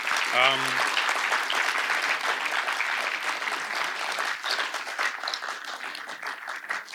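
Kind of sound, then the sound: crowd, round of applause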